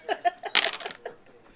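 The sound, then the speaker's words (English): Dice are rolled for a charisma roll versus a wisdom roll, rattling and clattering in a short burst of sharp clicks, with faint voices and a brief laugh-like sound around it. “In the middle of our conversation, let's stop and roll some dice.”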